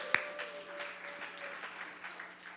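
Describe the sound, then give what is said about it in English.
A crowd claps together in a dense, steady patter of applause that stays fairly even throughout, with one sharper clap or knock right at the start. “Give yourselves an applause, amen.”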